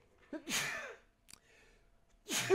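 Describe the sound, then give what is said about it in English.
A fairly loud sneeze: a short voiced intake of breath followed by a hissing, breathy burst, then a quiet pause before a second sneeze starts at the very end. “Bless you. Excuse me.”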